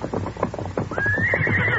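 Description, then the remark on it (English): A horse whinnies with a high, wavering neigh that rises and holds, over rapid hoofbeat-like clip-clop thuds, loud and continuous. “Holy smoke, we'll have to round up our horses.”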